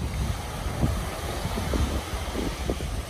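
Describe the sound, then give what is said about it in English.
Gusty wind blows steadily by the water at a beach on a dry day, a broad rushing hiss with buffeting low rumbles against the microphone and faint wave wash underneath, with no voices. “I'm just looking at the water out there and it is a wee bit windy, although it is dry, so I can leave the leg on the beach, but it isn't as flat as it was that morning I came down and it was raining.”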